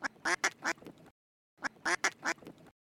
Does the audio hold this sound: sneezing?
no